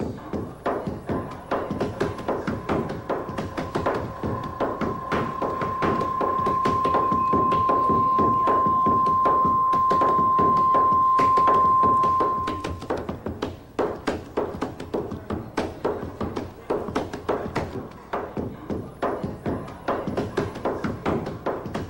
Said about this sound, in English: a quick video that she talks about of a Ghanaian, a West African post office, right? And how in the work that they do, they incorporate rhythm. This is really cool. Just listen to it. Listen to what this guy does as he's like stamping these letters.